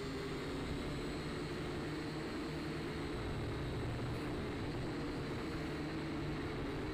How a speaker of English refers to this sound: But, again, it's still a nice little starter starter drone to play with.